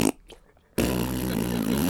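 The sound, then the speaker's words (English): After a brief breathy burst and a short pause, a voice makes a loud, sustained buzzing raspberry imitating a fart, running to the end. “The woman who was doing the other farts with me.”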